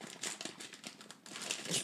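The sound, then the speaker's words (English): Wrapping paper, stapled to plastic, crinkles and rustles as a gift is unwrapped, revealing a Harley Quinn baseball bat pen. The paper makes a steady run of bright, irregular crackles with a louder burst near the end. “It's paper. It's not. Oh, it's stapled. No, it's stapled to the plastic.”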